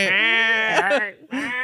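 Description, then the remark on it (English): A person loudly imitates a sheep's bleat, a wavering, nasal baa lasting about a second, followed by a brief pause and a shorter second bleat. “Yeah, because that you're attached to a guy that's just hanging like the fucking sheep in Jurassic Park before they feed it to the fucking raptor.”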